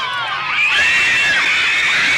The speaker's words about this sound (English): Listen to what it sounds like. You can hear the tonality of a scream change. Okay, they're showing up. Listen to them yell.